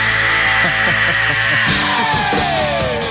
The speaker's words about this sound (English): This time we bring you the most outrageous screams in the history of rock and roll.